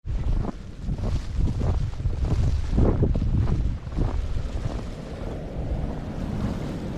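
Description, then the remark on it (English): Strong, steady wind roars and buffets outdoors in bad weather, with low rumbling gusts that swell and ease for several seconds. No one speaks. “The weather is so bad out here, there aren't too many people walking and there aren't too many cars on the road.”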